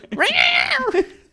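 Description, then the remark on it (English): A single drawn-out cat meow, clear, its pitch rising and then sliding back down over about a second before trailing off into a short low murmur. “Oh, the cat's in there somewhere.”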